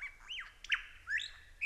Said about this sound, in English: the lyrebird is doing it right now with such skill that the best way to tell that these sounds are not the original birds, but mimicry